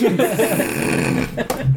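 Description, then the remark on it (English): A voice mimics wet sewer gurgling and low growling, a continuous bubbly, throaty rumble with uneven warbling pitch over nearly two seconds, ending in a short low grunt. “Like there's a putrid smell and the sound of like gurgling and growling.”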